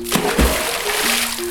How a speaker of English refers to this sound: I'm swimming in the ocean.